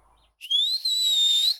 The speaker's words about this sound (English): You know how you whistle? You say, hey, whistle for me. That's what I do. I can't do it.